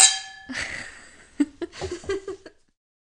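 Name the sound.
wine glasses clinking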